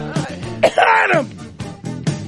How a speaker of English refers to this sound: Sorry. I had a little bit of a cough.